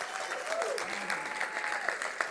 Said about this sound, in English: Keep clapping.